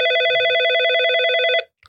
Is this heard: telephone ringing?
yes